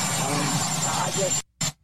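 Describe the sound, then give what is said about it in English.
A helicopter engine drones steadily with a broad, rushing hum and a thin high whine, cutting out abruptly and then returning for a brief burst before stopping again. “I forgot to warn everyone that there is a helicopter in the background there with the engine sort of humming and quite annoying sound there.”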